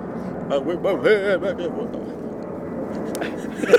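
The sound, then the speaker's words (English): A steady, droning rumble of an airplane passing overhead fills the background, with a few brief murmured voices near the start. “Let's just let this plane pass.”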